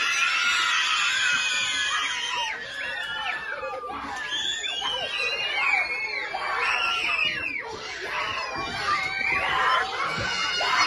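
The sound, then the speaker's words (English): A large group of schoolchildren screams and shrieks excitedly all at once in celebration after being told they no longer need to wear masks, a loud, sustained burst of high-pitched cheering that fills the whole stretch without pause. “School children scream in celebration when they're told they don't need to wear masks anymore.”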